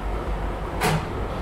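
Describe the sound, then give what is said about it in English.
A short hiss and thump of tram doors sliding shut, one brief burst over a steady low vehicle rumble, moderately loud. “The tram doors are closing. Please stand clear.”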